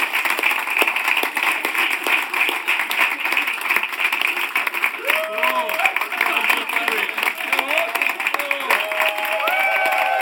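An audience claps together in a steady, dense burst of applause that stays loud throughout, with a few tonal whistles or cheers rising over the clapping toward the end.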